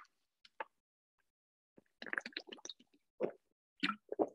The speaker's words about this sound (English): Okay. Sorry for a second. I'm gonna drink some water.